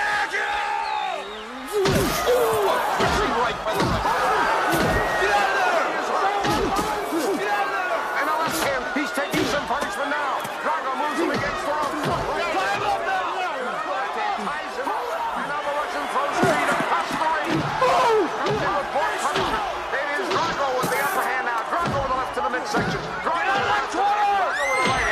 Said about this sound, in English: would you just play that little video of, let's see, I think it's Drago beating him in the ring. Pay attention to Drago, and when he punches, how Carl reacts. Please see that.